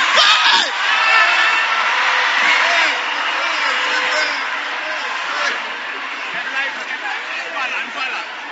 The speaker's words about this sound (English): Wait, you will not hear what I'm saying. You are shouting.